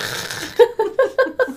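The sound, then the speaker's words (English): A voice imitates loud snoring: a long, raspy, breathy snort followed by five quick, evenly spaced guttural pulses, with no other talking. “Wake yourself up snoring.”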